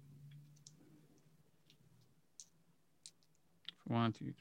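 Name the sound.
dice being rolled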